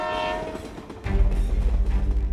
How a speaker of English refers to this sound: Finally, at 1 p.m., the train carrying the state militia pulled into the station.